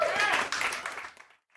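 An audience bursts into applause, a dense wash of many hands clapping that holds steady for about a second before fading quickly into silence.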